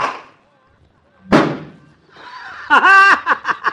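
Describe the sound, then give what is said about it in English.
A single sharp, hollow thud of a ball, hit in a street, smacking into the door of a car across the street and putting a big dent in it, ringing briefly before fading, followed by a burst of voiced laughter. “It's somebody's car across the street there. Put a big dimple in the door of it”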